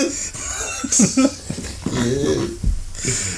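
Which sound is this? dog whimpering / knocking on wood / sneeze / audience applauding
dog whimpering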